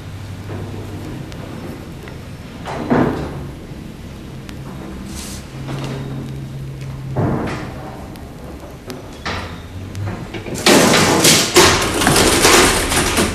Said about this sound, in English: This elevator is from the Empire Building on Hastings Street, erected not very long after the Great Vancouver Fire of 1886. It's a DC elevator, hence the absence of 60-cycle hum. And there is no fan noise.